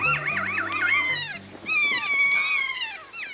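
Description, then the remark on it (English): Kea parrot calls (a large alpine parrot of New Zealand's South Island): two bursts of high, warbling squawks with rapidly wavering pitch, loud and shrill, with a brief pause between them and no talking. “Keas are large alpine parrots that live on New Zealand's South Island.”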